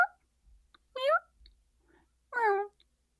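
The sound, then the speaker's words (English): A person imitates a cat, giving two drawn-out, wavering meows about a second apart, clear, with a few faint clicks and breaths between them. “Except I would like to hear some of your cat meows. Meow. Meow. Go kitten to teenager to adult cat.”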